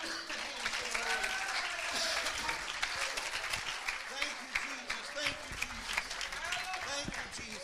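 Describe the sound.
An audience applauds steadily for several seconds, a dense wash of many hands clapping at once, with faint voices and a few cheers rising through the crowd noise.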